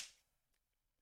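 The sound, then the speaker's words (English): A single sharp, crisp slap of a hand striking a muscular thigh, with a bright snapping attack that fades quickly, followed by a few faint, scattered ticks and near-silence. “Let us know down below if the thighs sound different.”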